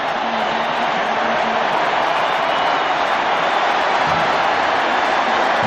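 A stadium crowd at a football game cheering after a defensive play, in a dense, steady roar that holds at the same loud level for about six seconds, with no clear individual voices or pauses standing out.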